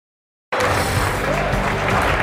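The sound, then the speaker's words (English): After half a second of silence, the closing bell at the New York Stock Exchange bursts in, loud and sustained. Its steady ringing is blended with dense applause and crowd noise that continues unbroken to the end. “You just heard the bells. We're just getting started from Post 9 here at the New York Stock Exchange.”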